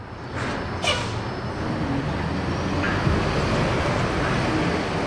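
Busy traffic on Broad Street in Philadelphia with a steady, dense rumble of passing cars and buses, continuous and fairly loud, with a brief higher-pitched brake squeal or hiss near the start.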